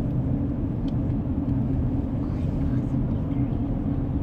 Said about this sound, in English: It's stop and go traffic.